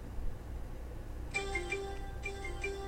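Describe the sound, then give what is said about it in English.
A fantasy sports app alert on a phone chimes twice in a row, each a short burst of bright, tonal electronic beeps, fairly soft over a steady low background hum. “Yeah, I play fantasy. That's what that is. Making a lot of fucking noise. I should have turned it off before the podcast, but I didn't.”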